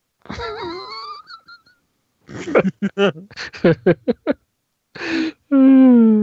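A single sharp, noisy sneeze bursts out near the end, preceded by wavering, whimpering vocal sounds and quick choppy breaths, then followed by a sustained voiced tone.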